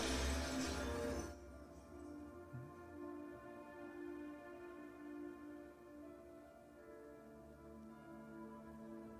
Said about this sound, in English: some guy dressed like a some guy in tiger pajamas just trying to smash out the window. That's funny. Did that guy headbutt the glass? That's what that looks like.